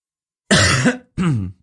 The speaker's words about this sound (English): Sorry I'm coughing. There's like this cold bug going around. You've been coughing all week.